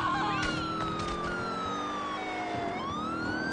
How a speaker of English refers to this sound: Siren's all fucked up now. You fucked up my siren.